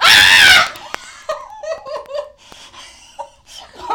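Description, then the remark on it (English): A loud, shrill scream of delight bursts out for about half a second, then gives way to excited, breathy giggling and laughter. “I'm sorry for that scream there.”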